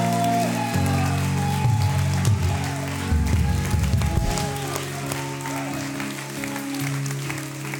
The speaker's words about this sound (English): Guys, this is the first night. Amen. Can we give the Lord a clap for everything He's done this evening? Amen.